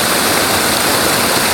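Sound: rushing waterfall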